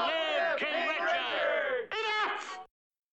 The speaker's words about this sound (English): See, look, there's all the poor people yelling.